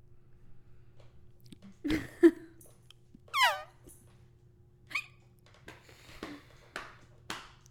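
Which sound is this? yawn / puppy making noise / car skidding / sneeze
puppy making noise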